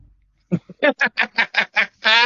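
A duck quacks about nine times in a quick, steady run, loud, the final quack stretched longer than the rest. No one speaks.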